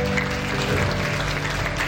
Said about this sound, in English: Now, yeah, give them a round of applause. Awesome. Yeah. For sure.